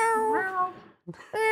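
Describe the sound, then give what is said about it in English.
A person voices two drawn-out, cat-like meows, the first long with a rising and falling pitch, then a brief pause before a second begins. Fairly loud, with no other sounds. “Meow. Meow. We love cats here on the show.”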